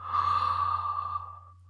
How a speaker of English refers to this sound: So we take a deep breath in, blow it out, blowing out the content of our mind with it. And naturally rest in the natural cessation of breathing at the end of respiration. Deep breath in.